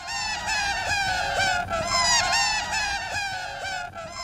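A sped-up laughter tape loop that sounds like a flock of seagulls squawking: dense, shrill, overlapping cries that run continuously and loudly, with no speech.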